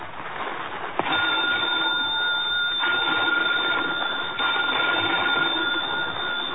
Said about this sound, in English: Phone bells ringing urgently in the dimness of the old lighthouse.